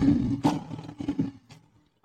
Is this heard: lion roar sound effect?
yes